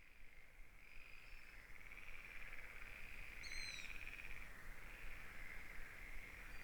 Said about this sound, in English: You're probably noticing that the sound in the background has moved from birds chirping to frogs.